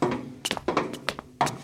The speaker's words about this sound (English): Well, here we are outside her door. Mom, it's me, Bender, your middle son. Can I come in? Are you decent? How's she gonna hear you knocking?